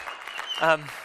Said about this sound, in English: So this coming Thursday is the closing for our church property, and we're excited about that. And you can cheer. That's okay.